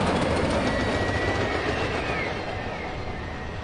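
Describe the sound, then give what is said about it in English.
A Chicago elevated train rumbles loudly along the tracks at Adams and Wabash, a dense, steady roar with faint metallic squeals and clatter that eases slightly as it continues. No voices. “I will always be lulled by the city's lurching trains.”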